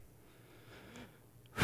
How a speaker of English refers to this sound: I don't know why I'm breathing heavy. I bike. I shouldn't be breathing heavy.